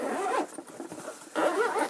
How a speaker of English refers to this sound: Bento box one. Bento box coming out number two. You go in that lunch box.